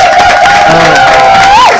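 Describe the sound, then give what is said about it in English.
A crowd claps and cheers loudly and steadily, with a shrill, sustained whistle running over the noise that swoops up and then drops near the end. “That's when everybody claps.”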